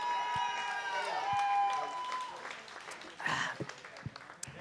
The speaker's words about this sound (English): And defending their title, the returning master debaters themselves, please give a round of applause for